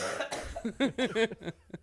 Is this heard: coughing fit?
yes